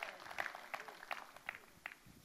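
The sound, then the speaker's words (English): A church audience applauds, clapping for God rather than for the pastor, in scattered, uneven bursts of clapping with sharp individual claps standing out. The applause is fairly faint and never swells into a full ovation. “Oh, you can clap that for God, not for Pastor.”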